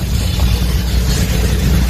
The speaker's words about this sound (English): We've got our sheriff's office truck pulling into the garage here at the Mico Fire Station.